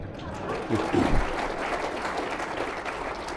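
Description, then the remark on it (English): Sustained audience applause, a dense rush of clapping that swells briefly near the start and then holds steady at a moderate level, with a faint voice or murmur underneath early on. “The crowd seems to agree with you.”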